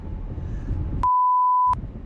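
A steady, pure censor bleep tone covering a cuss word in a viral TikTok filmed while driving in a car cuts in abruptly for about three-quarters of a second, fully replacing the low rumbling road and cabin noise, which resumes right after it ends.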